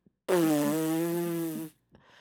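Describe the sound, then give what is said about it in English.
A voice makes one long, loud, buzzy fart imitation lasting over a second, holding a steady low-mid pitch before cutting off, with a brief faint breath after. “I understand when you try to squeak one past the goalie and it makes a noise.”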